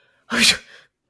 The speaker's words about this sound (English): Or sneezes.